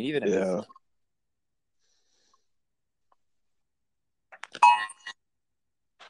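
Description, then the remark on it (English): After a brief stretch of speech and a long silence, a short, loud burst of a harsh electronic alert tone sounds for under a second, with a steady buzzing pitch, like a phone emergency alarm; an emergency alert received in Michigan. “Did you hear that, the alarm?”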